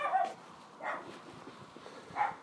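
A dog barks three times at uneven intervals, the yaps short, with low background noise between them and no one talking.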